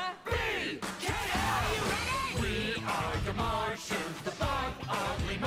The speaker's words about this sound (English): they're just shouting EKM and singing their own theme song. This theme song is what I remembered from the show.